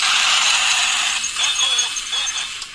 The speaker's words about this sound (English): And the train is slowing down, pulling into the station.